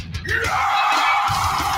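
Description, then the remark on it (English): A harsh, sustained scream in a heavy metal song intro bursts in and holds steady, loud and raspy, over a dense wall of distorted music for nearly two seconds. “And then here comes that scream.”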